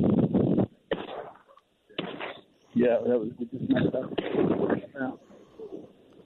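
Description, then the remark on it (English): Several shotgun blasts boom across open ground at a flock of redhead ducks coming into the decoys, loud and closely spaced, mixed in with excited voices talking over and between the shots; three birds are downed. “Shots fired. And back. Yeah, shots fired. Three birds down.”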